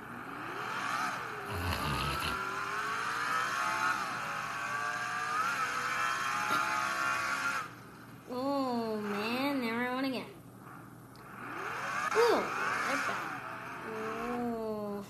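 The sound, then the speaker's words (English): A car engine hums steadily and then revs up and down in sweeping pitch changes as the car backs up and turns around on the Charlotte Roval road course and oval, loud, with a voice talking over it. “We'll continue when I back this car up, which I just did.”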